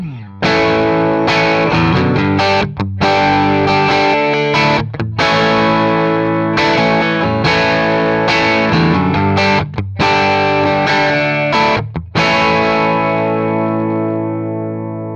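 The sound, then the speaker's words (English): A distorted electric guitar, the control take, plays loud, sustained chords through a guitar amp, with brief gaps between strummed phrases and a ringing final chord that fades out. No one speaks. “I just boosted the gain on the mic preamp, and all of a sudden I've got more distortion on my guitar amp.”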